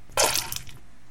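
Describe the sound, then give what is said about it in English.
A short burst of water splashing or sloshing in a vase, loud at first and tapering off within about half a second, with no voices. “So we have two vases, one with bong water, one with Axe body spray.”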